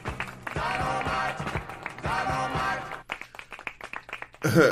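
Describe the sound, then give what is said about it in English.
Rapid claps burst out amid loud cheering voices for about three seconds, then thin into scattered claps before a short noisy flourish at the end. “Hey, yo, clap it.”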